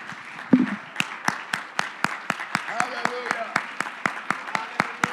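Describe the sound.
A church crowd claps hands in praise to the Lord in steady, unison rhythm, sharp beats landing about four per second, with faint voices murmuring and calling out in the background.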